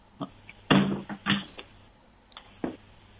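A door whose squeak was fixed with WD-40 opens and shuts without any squeak: a few short clicks and dull thumps from the latch and frame, fairly quiet, with no one talking.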